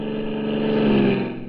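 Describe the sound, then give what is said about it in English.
An old-fashioned car engine, from a car that was once the newest on the road, runs steadily: a rough, buzzing mechanical drone with a slight rise in intensity partway through, no voices present. “Once upon a time, this was the newest car on the road.”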